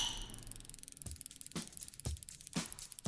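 About five sharp glass clinks tap out an even rhythm, roughly twice a second, each bright and brief over a quiet, faintly humming background with no talking.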